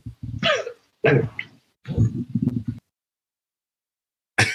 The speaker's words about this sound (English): And now he's hacking up a lung or sneezing or coughing. And physical difficulties. Or what? He just lunged off the couch with some sort of bodily fluid eliminating from his body. It looked like some scotch got caught back there.